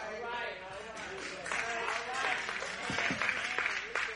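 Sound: a few people clapping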